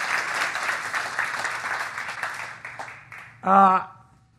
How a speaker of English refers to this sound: So, yeah, let's give the Bevilacquas a hand clap. Yeah.